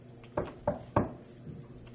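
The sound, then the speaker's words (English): Three quick, evenly spaced knocks on a wooden table, moderately loud, followed by quiet with a low background hum and no talking. “I don't think he legitimately meant knock on the table and Sluggo will magically appear.”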